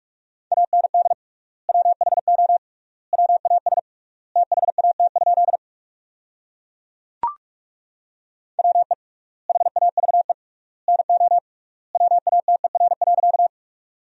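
Rapid Morse code beeps on a single steady mid-pitched tone, sent at about 45 words per minute with 3x word spacing, sending sentences built from the top 100 words, in short clustered bursts with gaps between words and one sharp click partway through.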